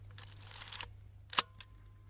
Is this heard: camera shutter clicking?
yes